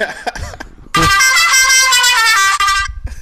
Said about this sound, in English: It's my air horn app.